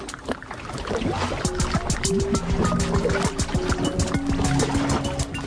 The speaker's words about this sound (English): The creaking of glaciers and the drip of glaciers and the music of the wind.